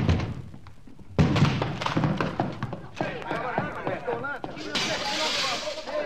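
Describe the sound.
The door of a gas-filled flat takes a flurry of heavy thuds and cracking impacts as it's bashed and smashed open, followed by raised, shouting voices and a lingering crash of debris.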